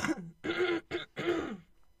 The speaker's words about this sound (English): The cough, accumulates. The cough of death.